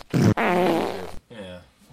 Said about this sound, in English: Instead of like cutting out the part where we said things, just edit in a bunch of farts there.